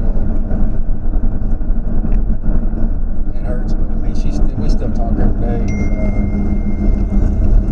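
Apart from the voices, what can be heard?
car interior noise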